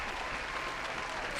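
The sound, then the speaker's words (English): A steady wash of applause with cheering, broad and continuous with no breaks, many hands clapping at an even loudness throughout. “And just like fans cheering.”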